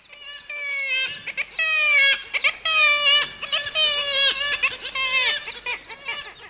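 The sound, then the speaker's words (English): Kittiwakes call loudly and continuously, their nasal, wailing cries overlapping as if from a busy colony, with repeated rising and falling notes. “Tweet of the Week is kittiwake, a recent addition to the Manx BirdLife's Birds of Conservation Concern Red List”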